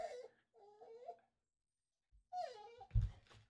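A Labrador named Belle whines for attention in three drawn-out, wavering high cries separated by short pauses, fairly clear, with a dull low thump near the end of the last cry.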